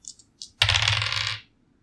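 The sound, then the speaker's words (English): Two light clicks, then a bright clatter of dice tumbling across a table for under a second before settling. No one speaks. “I rolled 2 7s on these dice.”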